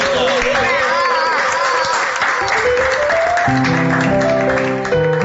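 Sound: studio audience applause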